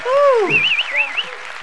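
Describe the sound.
A crowd claps in a steady, dense patter, while a high warbling whoop and a short rising voice cry ring out over the clapping.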